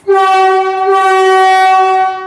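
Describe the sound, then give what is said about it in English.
A very loud horn on a new Canada Line train car, built in Korea and undergoing testing in Richmond, blasts in one steady, sustained tone for about two seconds. The tone is harmonically rich and fades slightly at the end. “In case you're wondering, it has that new train smell, and each car features a horn, a very loud one.”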